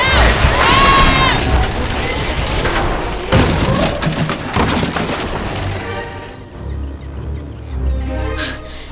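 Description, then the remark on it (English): A large wooden ship bears down close by, timbers creaking and splintering amid loud crashes and booms, then the din gives way to a low rumbling wash. “It's not an old-timey ship that almost ran us over.”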